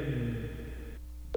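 A phone call to a friend: the ringing tone hums steadily over the line for about a second, then cuts off, followed by a brief sharp click as the call connects.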